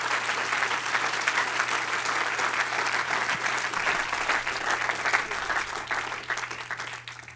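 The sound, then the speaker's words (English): A large crowd claps hard and fast in a dense, sustained roar of applause that stays loud and steady for several seconds, with no talking over it. “Clap your hands as hard and loud as you can right now.”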